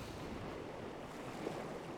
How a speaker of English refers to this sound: We're on a little spit of land, gravelly beach, and a little blustery, windy, dewy, wet.